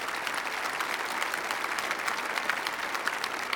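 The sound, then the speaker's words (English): Steady audience applause for the team of men on stage, a dense wash of many hands clapping at an even loudness throughout, with no voices standing out above it. “Would you just give them an applause?”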